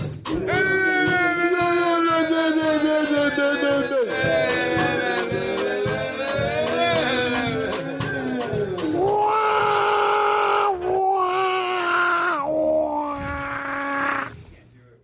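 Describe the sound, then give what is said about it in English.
A voice imitates a band's blaring horn with long, loud, buzzy sustained tones whose pitch wavers and dips, then breaks into several shorter honks toward the end. “you see who does the better horn. I think yours was better. You do your imitation.”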